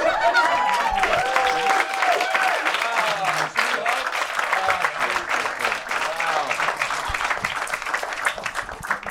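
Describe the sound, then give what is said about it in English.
Loud, sustained audience applause at a comedy show for comedian Todd Glass after his set fills the whole stretch. Dense clapping with scattered cheers and voices mixed in holds steady before easing slightly toward the end. “Keep it going for Todd Glass, Jesse May Peluso, Tony Baker, Josh Potter.”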